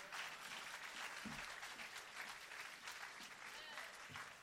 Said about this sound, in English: Thank God these hands are still moving. And when somebody tell you to clap your hands, test them out right now and see if they're still working, huh?